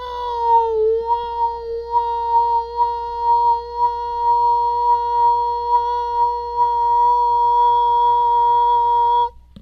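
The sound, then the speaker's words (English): A voice, demonstrating acoustic resonance, sustains one steady, pure, whistle-like note for about nine seconds, sliding slightly in pitch at first, then swelling and pulsing in loudness as it settles on the mouth's resonant frequency. “That's the resonant frequency in my mouth.”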